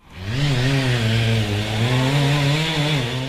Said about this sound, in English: Chainsaws, mulchers and diggers. Contractors busy clearing the debris left behind by tornadoes. In Tasman's Redwood Valley, toppled trees have smothered homes and properties.